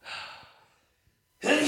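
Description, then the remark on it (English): A sneeze: a drawn-out breathy inhale fades away, a brief pause follows, then a sudden loud, explosive burst of air cuts in. “I might sneeze first, though.”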